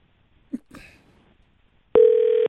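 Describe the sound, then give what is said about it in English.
A telephone ringing tone over the line after choosing the pay-the-bill option in an energy utility's phone menu: after a soft bump and brief rustle, a steady, loud electronic buzz-tone starts and holds through the end, with no talking. “I called, if you want to ask another question, I press that option. I'll just press the pay the bill, and then we'll tell him, we'll ask him about the pay pack.”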